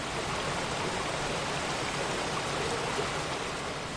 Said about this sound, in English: The water is relentlessly tumbling down the rocky edge of a small waterfall and is swirling around in the pool. There is not one spot in the pool where the water isn't moving